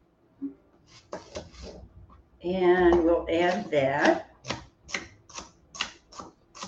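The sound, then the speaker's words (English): A knife finely dices celery on a cutting board in a steady run of sharp taps, pausing briefly while someone speaks before the rhythmic chopping resumes. “I think I'm going to take some celery and I'm going to dice that up fine as well.”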